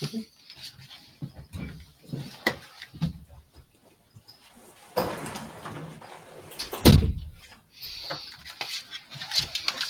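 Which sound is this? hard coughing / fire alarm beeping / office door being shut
office door being shut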